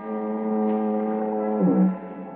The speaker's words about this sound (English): It's cool, quiet, except for the monotonous moan of the foghorn down at the point near San Quentin Prison.